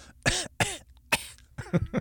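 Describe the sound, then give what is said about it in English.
A person fakes a cough, pushing out a quick series of four or five exaggerated, throaty hacks with short pauses between them and no talking, joking about calling in sick to work after the Super Bowl. “I'm feeling a cough come on myself. Got that cough coming on.”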